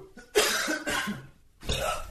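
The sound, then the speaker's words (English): A burp sound effect played from a soundboard app on an iPad: three loud, rough, raspy bursts in quick succession with a short gap before the last, and no talking. “I think for next week, I have to isolate just the burp because this this app that we're using, the soundboard app, it's basically, I just have it pulled up on my iPad.”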